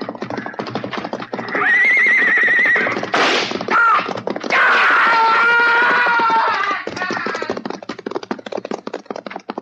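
A horse whinnies loudly twice in quick succession while hooves clop in a steady, rapid rhythm throughout, continuing after the neighing fades, as a man tries to ride the horse out of a corral.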